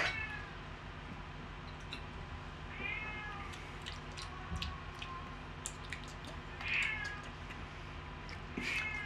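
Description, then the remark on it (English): A cat meows several times at irregular intervals, short drawn-out cries over a steady low hum, with no one talking. “This cat's gonna be in the background the whole episode.”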